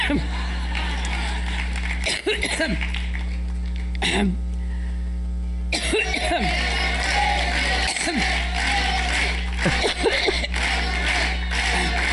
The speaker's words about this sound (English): I'll let you hear it. She had like a really bad coughing fit while she was speaking in New York.